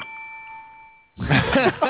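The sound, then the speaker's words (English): A single ding from a small desk bell, its bright metallic tone ringing out steadily for about a second before fading, then a person starts talking right after. “Is that the bellhop you're calling for? That's a little bell.”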